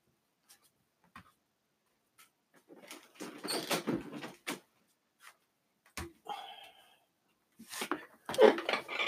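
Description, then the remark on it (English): A door is pushed shut amid shuffling and handling noises, with a few sharp knocks and clicks scattered across the quiet. “I got to shut my door before anyone else comes in and interrupts me.”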